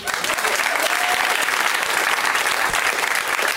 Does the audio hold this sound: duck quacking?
no